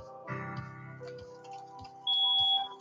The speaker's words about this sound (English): The building you are sitting in is probably fitted with one of these, a smoke detector.